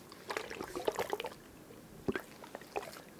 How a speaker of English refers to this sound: So, we're gonna go and do another ASMR sound. So, what's the second one? What are we gonna do? The second one, we'll do the water waves. I really like this.